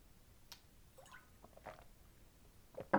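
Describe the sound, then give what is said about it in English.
Someone drinks the last of a coconut drink: a few soft, wet sips and small liquid clicks, ending in a louder slurp, with no talking. “I'm going to finish my coconut milk. No, sorry, drink. My coconut drink.”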